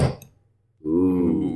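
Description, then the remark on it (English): A soda bottle lands on a table with a single dull, solid thud. A brief quiet follows, then a steady, humming tone that holds to the end. “Well, I just heard a thud from the like bottle hitting the table.”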